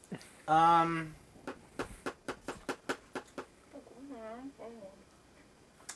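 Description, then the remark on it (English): A run of about ten quick, crisp crunching bites in a steady rhythm, bracketed by a loud short vocal sound before and a softer wavering vocal sound after. “Pardon the chewing.”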